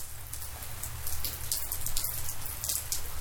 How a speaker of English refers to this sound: And let's say goodbye to the rain.